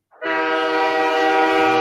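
A loud, sustained train horn blares, played as a hype train sound effect, starting abruptly and holding a steady, rich chord for nearly two seconds with no voices over it.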